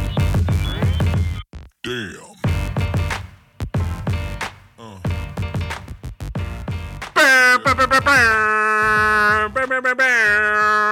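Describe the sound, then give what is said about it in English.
Loud, blaring air horn blasts signalling crunch time on a Fish Friday, two long steady honks with a rich buzzing tone, coming after several seconds of choppy, clipped voices. “Oh, you know what those horns mean.”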